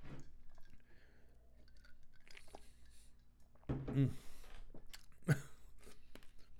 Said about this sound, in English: Sorry, got caught chewing on some ice. I'm sorry if that went into the fucking microphone.